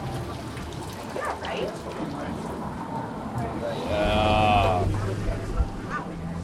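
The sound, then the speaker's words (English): A drink from a can is poured hard into a glass, splashing steadily for a couple of seconds, the gurgling pitch rising as it fills, after faint background voices and clatter. “The trick is just keep your hand over top of it when you open it and kind of slow. And then pour it hard.”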